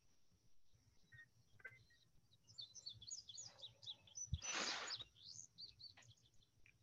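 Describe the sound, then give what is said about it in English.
Birds chirp in quick, overlapping bursts of high, bright notes over a steady low hum, with one louder noisy rush in the middle; no one speaks. “Cool here on the birds chirping though.”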